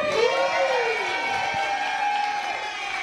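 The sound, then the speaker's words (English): A studio audience in the live studio of the Super Sculpture and Sound It Out radio show cheers and whoops together on request in a steady, loud roar of many voices that holds for about three seconds without letting up. “Hello to everyone in our live studio. Can I get a cheer, please?”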